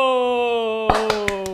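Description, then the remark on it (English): A steady, sustained tone plays, then four sharp, evenly spaced hand claps cut in over it in a deliberate slow-clap rhythm, each one crisp and moderately loud. “Slow clap, I love it.”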